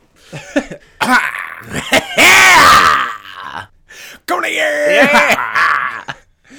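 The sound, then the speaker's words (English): A loud cough slides into an exaggerated, theatrical vocal flourish imitating Jack Black, with groaning, sung-like tones stretching out in two bursts as a voice hams it up. “I try to like turn it into a Jack Black every time I cough now.”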